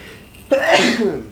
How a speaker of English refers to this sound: Oh, live sneeze.